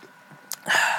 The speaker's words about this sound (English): I'm drinking a Red's Wicked Apple, 8% alcohol, and yeah, so here's the feeling good all the time. Let's take a sip of this.